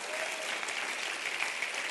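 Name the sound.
audience clapping hands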